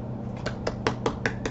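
A quick run of about six finger snaps given as applause for a Marvel movie, in an uneven rhythm, each a sharp, bright click standing out clearly over a steady low hum, with no voices.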